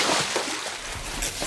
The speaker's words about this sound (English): I guess let's mop up this cold water and get back to the show. Yep. Fun to splash the cold water, not always fun to mop it up.